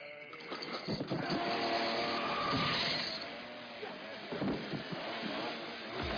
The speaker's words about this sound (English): Chainsaw has to be one of the most impractical damn weapons to try to fight with somebody. Yeah. Those things are dangerous. Chainsaws are very dangerous.